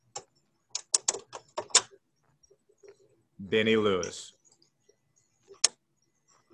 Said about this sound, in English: You heard him typing, I think. I heard him typing.